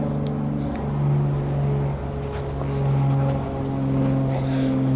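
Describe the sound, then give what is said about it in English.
An airplane drones overhead, a steady low engine hum with layered tonal harmonics that swells and eases slightly over a few seconds, with no one speaking. “And a plane.”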